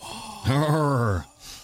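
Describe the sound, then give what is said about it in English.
A person imitates a dying last breath with a long, drawn-out groan, a low raspy mummy-like moan that sags in pitch, loud, lasting under a second before trailing off into faint noise. “You sound like a mummy. You sounded like Bill Clinton. That was him breathing his last breath.”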